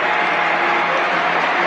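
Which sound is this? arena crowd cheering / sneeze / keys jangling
arena crowd cheering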